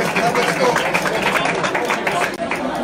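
An audience breaks into a round of applause for an audience member who answered a math question, a dense, steady wash of clapping that holds at even loudness for a few seconds, with crowd chatter mixed underneath.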